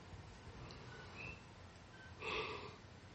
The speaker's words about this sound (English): Sorry, yawning.